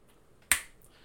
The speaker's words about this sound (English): High five.